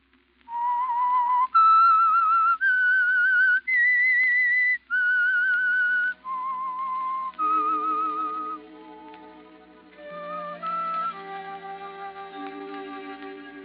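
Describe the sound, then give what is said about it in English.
A lone whistler carries a slow, eerie melody in sustained, clear notes, then soft orchestral accompaniment enters beneath and the tune continues over it: the theme of the Signal Oil radio program The Whistler. No talking. “Whistle is your signal for the Signal Oil Program, The Whistler.”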